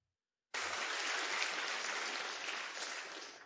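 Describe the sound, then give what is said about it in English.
A crowd in Christ Community Church bursts into applause after a brief silence, a dense, steady clatter of many hands clapping that stays loud and even for about three seconds. “And that's an applause line in this once-named Christ Community Church.”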